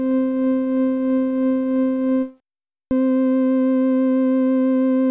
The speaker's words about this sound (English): Here's a note with just tremolo on it, followed by a note with just vibrato on it. And I'm using the rectified sine wave for both since it's a bit clearer.